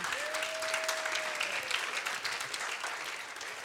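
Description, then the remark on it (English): A crowd at a church gathering applauds steadily as a new staff couple is called up, dense clapping filling the space, with a brief high tone ringing faintly early on as the clapping continues evenly throughout. “I'm about to clap for them so I can drink water.”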